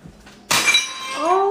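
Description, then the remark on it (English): A teacup broken by a cat shatters with one sudden, loud crash, its bright ceramic fragments ringing and tinkling as they fade, followed by a brief rising vocal sound. “Oh, that cat. What? He ruined her teacup.”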